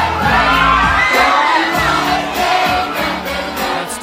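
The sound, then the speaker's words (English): A loud concert crowd cheers and shouts continuously as a performer on stage with a microphone sings cover songs, many voices whooping and yelling together with a steady roar, plus a few higher shrieks rising above the din. “He's getting the crowd going, give him that.”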